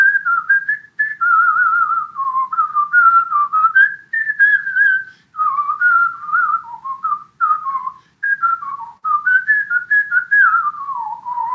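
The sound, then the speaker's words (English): A person whistles a bouncy, familiar tune solo, the melody rising and falling in quick phrases with brief breaths between, clear with no talking. “when I'm listening to you whistle the I Love Lucy tune?”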